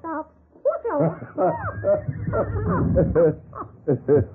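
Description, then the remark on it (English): A run of squawks and chattering cries blends with a whinny-like neigh, fairly loud over about four seconds, sounding like voices imitating a parrot and a horse. “Chiquita seems interested in our horses. And horse seemed to want to talk back.”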